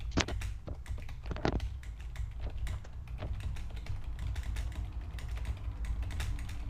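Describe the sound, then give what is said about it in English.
Rapid, irregular clicking of keys on a computer keyboard as someone posts to a live stream chat, steady throughout, with a few sharper taps standing out over a low background hum. “What are you doing? Typing your address?”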